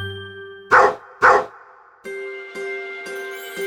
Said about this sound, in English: But as he was pouring the cider, he heard a terrible noise at the top of the stairs. It was the dog! She had grabbed the bacon and run off with it.